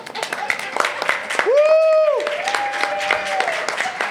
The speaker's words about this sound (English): Everybody applaud the band. Thank you.